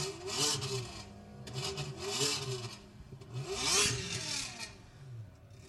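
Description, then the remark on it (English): A sports car engine fitted with a cam and exhaust revs several times in a row, its throaty pitch climbing and dropping with each blip, loud, with no one talking. “But that one had a cam, sounded really nice with an exhaust and everything.”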